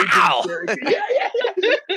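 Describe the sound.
A man's voice imitates a scream: a loud, harsh cry that slides down in pitch, then breaks into wavering, warbling moans for about two seconds.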